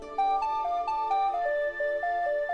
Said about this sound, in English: What's that? It's Taint Hammer's Blackberry. He must have dropped his phone in the commotion of the escape.